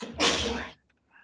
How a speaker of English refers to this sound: Bless you.